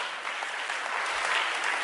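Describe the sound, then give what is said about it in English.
A church audience claps their hands together in praise to God for salvation, a dense, steady wash of applause, loud and continuous with no pauses and no voices audible. “So if you are saved today, you must clap your hands and give God praise that God has saved you, God has delivered you before you cross a certain line.”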